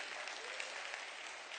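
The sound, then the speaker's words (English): An audience gives the Lord a hand clap during a morning service, a dense, steady wash of many hands clapping at even loudness throughout the short moment, with no voices standing out. “Come on, give the Lord a hand clap right there.”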